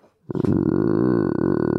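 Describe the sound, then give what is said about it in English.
A person's voice imitates a growling bear with one long, loud, rough growl that starts abruptly and rumbles steadily for over a second. “It's a growling bear.”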